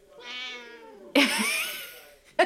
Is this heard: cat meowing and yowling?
yes